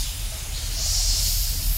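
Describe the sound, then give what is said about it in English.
A steady, loud hiss of steam escaping from volcanoes on the early Earth, amid lava and gas, fills the whole moment, with a deep rumbling roar underneath and no pauses or voices. “There were volcanoes all over the place with lots of lava and gas and steam.”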